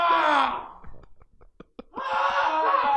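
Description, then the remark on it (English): A train horn sounds two long, loud, harmonically rich blasts, the first fading out and the second starting after a brief gap filled with faint clicks and rumbling. “Listen to that horn!”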